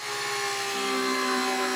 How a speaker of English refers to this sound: That's the sound of a cutting machine at Motorport USA in Escondido. It's cutting Kevlar mesh one piece at a time. And then each piece is carefully sewn into a pair of protective pants that are made to order.